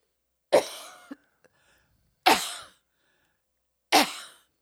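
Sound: coughing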